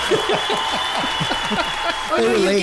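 Canned studio audience applause plays steadily for a few seconds, a dense wash of clapping with a few whoops mixed in, at moderate volume with a faint steady tone underneath.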